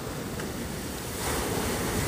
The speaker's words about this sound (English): Part of me wants to give you the opportunity to hear the sea a bit more.